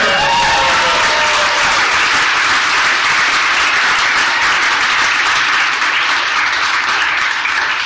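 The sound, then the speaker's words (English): An audience bursts into loud, sustained applause as comedian Ben Cromer, of Comedy Central and Last Comic Standing, is introduced, dense clapping holding steady for several seconds, with a few whistles and cheers rising briefly at the start. “On Comedy Central and Last Comic Standing, please give it up for the hilarious Mr.”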